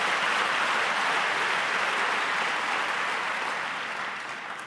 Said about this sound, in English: Hallelujah. Let's give a round of applause, Bazalan, to the Lord.